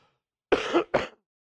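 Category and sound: human body sound, coughing and throat clearing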